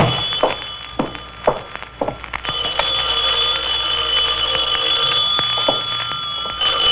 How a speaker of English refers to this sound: Knew that phone would be ringing. Until I unlock my door.